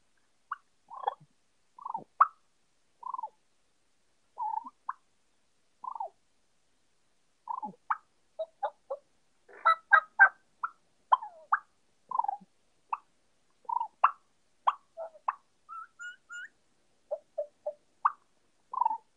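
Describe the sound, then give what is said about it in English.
Soft turkey purrs and clucks made on a mouth call with the end of the tongue: a steady, irregular run of short, quiet chirping notes, unaccompanied, briefly bunching into quicker rolling bursts midway. “So when I mean by soft stuff, you just take a mouth call and I do the end of my tongue like that with a purr.”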